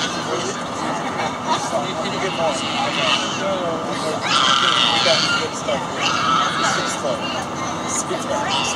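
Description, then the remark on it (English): A baby shrieks in loud, high-pitched bursts on an airplane, the cries rising and bending in pitch over a steady cabin drone and a murmur of voices. “Sounds like a happy baby.”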